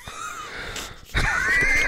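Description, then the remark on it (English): Heavy, raspy wheezing breaths, fairly loud, with a whistling rasp that swells sharply into a harsher, louder breath in the second half; no talking. “They just heard you downtown breathing.”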